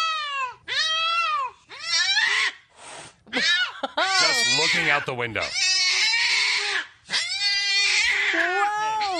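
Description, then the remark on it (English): A cat staring out a window yowls loudly and repeatedly on seeing a dog the family is bringing home, in long, wavering, drawn-out cries with brief pauses between them, while a person speaks briefly over the noise. “Listen to how this cat responded when it happened to this family.”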